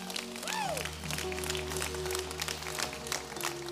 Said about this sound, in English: And it is, yeah, you can clap again. That's fine with me.